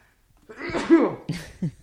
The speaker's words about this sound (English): I'm going to sneeze. Hold on.